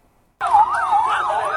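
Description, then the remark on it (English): An ambulance siren at Gaza's Jabalia refugee camp, where wounded children are rushed to ambulances after Israeli strikes, starts abruptly after a brief silence, its loud wailing tone sweeping up and down in quick, steady cycles, with no voices. “Wounded children rushed to nearby ambulances.”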